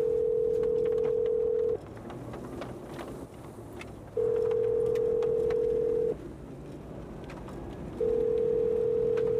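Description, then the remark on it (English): A phone call placed from inside a car rings out: a steady mid-pitched electronic tone sounds in long two-second bursts separated by pauses, repeating three times over a low rumbling background hum. “I'm gonna call him right now.”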